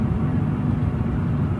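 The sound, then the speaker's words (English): A steady, low rumble of a car driving along a very dark road, its engine and tire noise droning evenly without change for the whole moment, fairly loud, with no voices. “Okay, so it's a video of like a car driving down a really dark road.”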